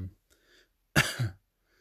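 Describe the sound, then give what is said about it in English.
A single rough human cough bursts out in two quick pushes, loud and brief, after a moment of faint, quiet breathing or murmuring. “And I also have a continuous cough, but I have tested for COVID a number of times and I'm testing negative, so I don't know.”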